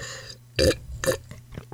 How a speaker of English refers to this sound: I just slurped on my podcast.